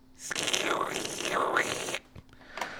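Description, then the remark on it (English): A person imitates buzzing cicadas with a loud, breathy hiss lasting under two seconds, its pitch swooping down and up twice. A brief click and faint noise follow. “Can you guys hear the cicadas outside?”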